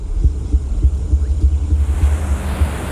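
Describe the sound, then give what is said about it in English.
The engine of Dexter's boat, named Slice of Life, revs as it speeds back to shore, rumbling with a deep, pulsing throb under a steady wash of water and wind noise, the hiss brightening partway through. No one speaks. “The revving of Dexter's boat engine drowns out the memory.”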